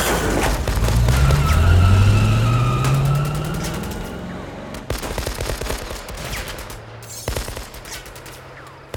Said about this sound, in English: The gang's Ford V8 leaps through the garage doors, smashing the wood to matchsticks.